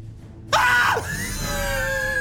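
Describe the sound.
A person vocally imitates an explosion from a movie: a sudden loud, raspy burst whose pitch drops sharply, then trails into a strained, sustained scream-like tone lasting over a second.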